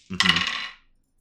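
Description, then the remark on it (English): A quick clatter of dice tumbling across a hard tabletop, a bright rattle of small hard objects lasting under a second before settling into silence. “Rolling some dice here.”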